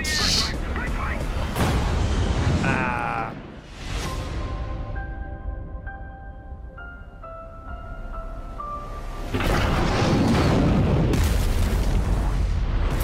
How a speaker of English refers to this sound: Did you see the way his engine blew out? That's gonna make that mission pretty impossible.